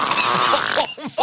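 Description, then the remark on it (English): A loud, raspy fart sound stretches for about a second, ending in a few short squeaky, wobbling bursts. “Brought a case against his former supervisor for constantly farting.”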